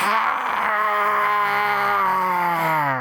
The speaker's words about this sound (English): Another howl from the beast, the dweller.